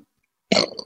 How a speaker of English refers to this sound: Yeah. I think I'm going to burp.